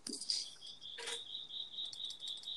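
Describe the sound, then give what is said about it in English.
Crickets chirp in a steady, high-pitched pulsing trill that runs throughout, fairly quiet, with a brief rustling burst partway through and no talking. “The crickets.”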